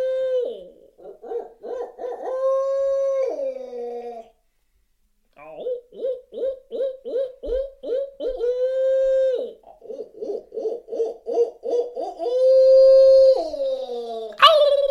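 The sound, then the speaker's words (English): A human voice imitates a barred owl, giving loud hoots that break into rapid, rhythmic cackling bursts, like an owl's laughing call, with a brief pause partway through. “And this is where you go into the laugh of an owl.”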